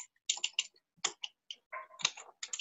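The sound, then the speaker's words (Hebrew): Quick, irregular keystrokes tapping on a computer keyboard, fairly quiet, coming in short bursts with brief pauses between them and no voices, as notes on poker hands are typed. “אוקיי, אני רושם לעצמי תוך כדי, כי אני לא מול הטלפון פה בדרך כלל, ויש לי מחשב, אז אני פשוט רושם את זה תוך כדי, אז אם שומעים רע של הקלדה, אז תבין.”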